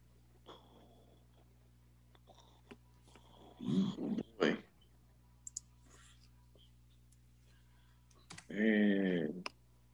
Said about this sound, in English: He's still typing.